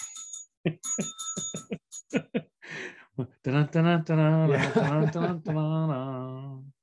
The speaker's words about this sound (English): Or if one of the bikes accidentally rings its bell.